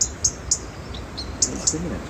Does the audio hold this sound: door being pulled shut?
no